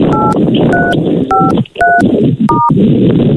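A phone number being dialed: five short two-tone keypad beeps at a steady, quick pace, each a bright electronic double tone, over a constant rushing hiss of background noise.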